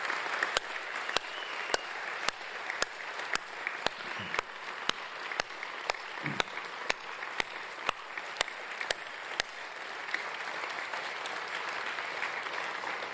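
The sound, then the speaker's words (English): Audience applause saluting warriors, a dense wash of clapping with a sharp, steady rhythmic beat of claps running through its first two-thirds before settling into an even, continuous roar. “And can we put our hands together and salute these warriors with applause?”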